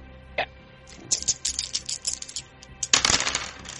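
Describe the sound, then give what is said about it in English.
Dice clatter and tumble across a hard tabletop in a rapid burst of small clicks, settle, then a second louder roll rattles briefly. There is no talking. “Same roll. 16.”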